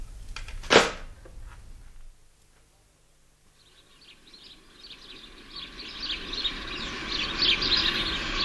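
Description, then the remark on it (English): A sharp crack rings out, then after a brief lull a flock of birds starts chirping, their busy overlapping calls building and growing louder toward the end. “Starling or blackbird? They're resident birds.”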